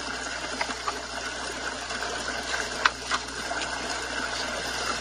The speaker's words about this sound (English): So here is the waterfall behind me, and here is the waterfall in front of me.